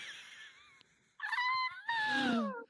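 A cat named Perseus Romeo lets out two loud, high-pitched squealing cries of delight, each rising then sliding down in pitch, after a softer opening whine.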